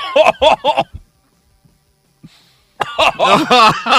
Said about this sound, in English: You know what? If you keep coughing, it's going to come out your nose.